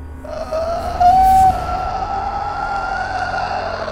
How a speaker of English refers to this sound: As another door in the side of this room opens up and you see this ghostly like skeletal body of a wraith come out of the wall and start screeching at you all.